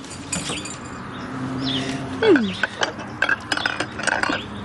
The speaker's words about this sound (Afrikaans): Kom ons was gaan die rest van die skottelgoed.